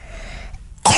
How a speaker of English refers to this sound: That's a cough. Where'd you get that? From the bad weather.